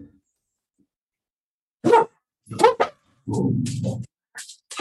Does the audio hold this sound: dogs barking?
yes